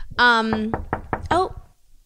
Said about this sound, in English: Is that a knock I hear? It's a knock. Why, yes it is.